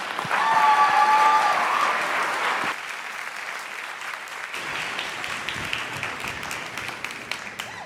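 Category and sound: crowd, audience round of applause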